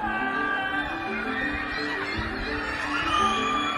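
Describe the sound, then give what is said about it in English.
A continuous nightly chorus of many Shanghai residents screaming and wailing from high-rise apartment buildings during a strict COVID lockdown, overlapping voices echoing together at a steady level with no clear speech. “Trapped inside and running out of food, many residents have resorted to a nightly chorus of primal screams from high-rise apartment buildings.”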